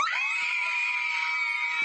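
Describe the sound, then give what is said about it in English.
A sustained, high-pitched scream of joy from a high school senior in Santa Ana, California, who has just received early admission to Harvard University, rings out loudly and steadily for nearly two seconds, without any talking. “Why the screams?”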